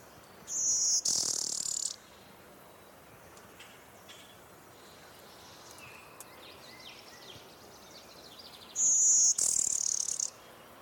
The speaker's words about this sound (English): 460, Blue Winged Warbler.